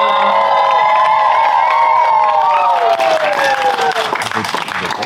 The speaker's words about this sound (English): Standing ovation.